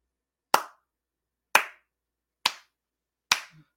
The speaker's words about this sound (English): Slow clap.